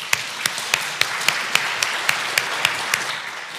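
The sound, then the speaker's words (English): An audience in a church applauds together to thank volunteers who decorated the plants on the chancel, a steady wash of many hands clapping with a few sharper claps standing out in an even rhythm. It sounds like a large group at moderate volume. “And if the congregation would join us in thanking these valuable volunteers with a round of applause.”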